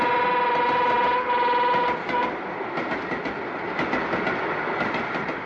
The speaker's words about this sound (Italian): Com'è bello! Com'è bello! È impressionante! L'altra volta c'erano meno vagoni, ma stavolta è proprio bello! Però l'altra volta c'erano più vagoni. Vabbè, insomma, il treno è sempre il treno, eh?